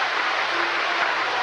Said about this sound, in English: Red Sox fans coming to life. They haven't had much to cheer about.